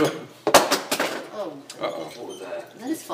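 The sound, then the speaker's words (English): One of Grandma's spice containers, knocked by Dobby, clatters with a couple of sharp, bright knocks against a hard surface, while people talk in the background. “No, it was Dobby. It was one of Grandma's spice.”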